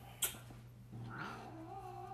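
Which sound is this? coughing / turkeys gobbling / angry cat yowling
angry cat yowling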